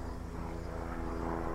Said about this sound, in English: Ah, airplane. Helicopter. Oh, helicopter. Pretty low.